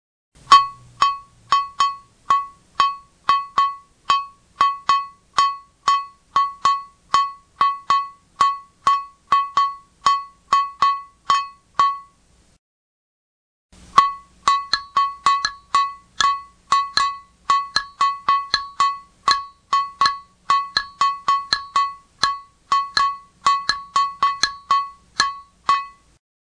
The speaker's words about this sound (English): Now I'm going to play example 2 on the bell, once without the 4 count and once with the 4 count. Notice how the notes of the 4 count metronome fit in with the notes of the bell.